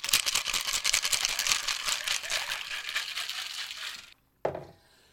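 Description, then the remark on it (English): Ice rattles hard inside a cocktail shaker while mixing a Red Death cocktail of sloe gin, amaretto, triple sec, Southern Comfort, vodka and orange juice, for about four seconds in a fast, steady rhythm, then stops abruptly, followed by a single dull knock that fades quickly. No one speaks. “And it doesn't call to shake, but I enjoy the sound.”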